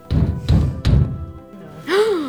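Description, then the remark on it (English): Three loud, heavy knocks bang on the Lord Regent's door in quick, evenly spaced succession, each with a booming low thud, followed by a short whining, wavering tone. “You hear a loud banging at the Lord Regent's door.”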